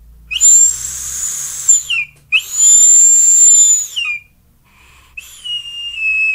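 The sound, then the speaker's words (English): A loud, piercing high-pitched whistle from a device's airflow sounds in three long bursts, the first two steady and sustained, the last slightly lower and quieter, with brief gaps between them and no talking. “So the way that you get rid of that whistle is you just turn the airflow control just a sliver.”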